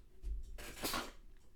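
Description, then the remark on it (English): A single sneeze: a short breathy intake followed by one sharp, hissing burst that fades quickly, heard on its own with no talking. “Hold on, I have to sneeze.”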